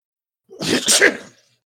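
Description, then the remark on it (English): A single forceful sneeze bursts out with a brief inhaled lead-in and a sharp hissing release, then quickly fades to silence. No talking accompanies it. “And with that, Hagar, you wake up sneezing as if somebody has been speaking your name behind your back.”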